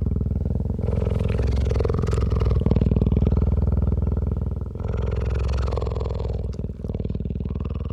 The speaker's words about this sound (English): And I, over about an hour, very slowly lowered the boom down to within about 3 feet of this animal's head. And then I recorded this remarkable close-up purring sound, which wasn't even audible where we were 10, 12 yards away.